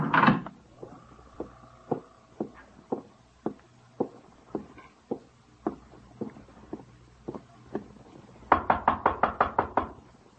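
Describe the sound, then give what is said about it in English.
Steady, heavy knocking on a door, one thud roughly every half second, then a fast, louder burst of about eight pounding blows at the end. No voices are heard. “Open the door. Lomax. Break it down. Break down the door.”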